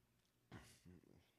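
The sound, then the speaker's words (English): A single loud sneeze, a sudden noisy burst lasting a fraction of a second, followed by a brief voiced grunt and then quiet. “Say bless you.”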